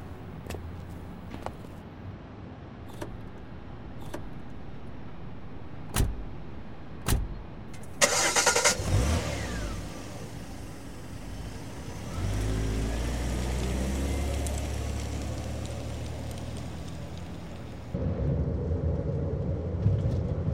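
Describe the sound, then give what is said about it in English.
A few sharp clicks and knocks, then a car engine cranks and starts in Denmark, idles briefly, and revs up as the car pulls away, its steady hum continuing to the end. No one speaks. “Please, my car is here.”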